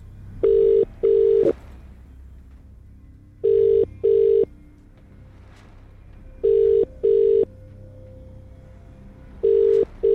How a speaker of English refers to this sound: Remember, you need to answer your phone within 5 rings. Very important.